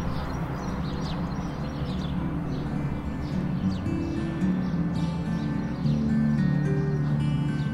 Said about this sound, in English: So there's, at my house, there's a balcony and there are always these birds. And so that was like birds full swing, I think, in the late afternoon. And it was just really beautiful.